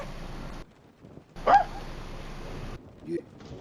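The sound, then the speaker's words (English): A dog gives one sharp, fairly loud bark against a steady background hiss, followed a moment later by a softer, shorter yelp. “I think we can hear the dog.”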